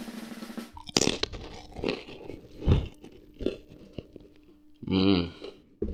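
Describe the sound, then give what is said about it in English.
Loud, crunchy chewing with several crisp bites at an uneven pace, each a sharp crackling burst. A short hummed vocal sound comes near the end. “That was amazing eating.”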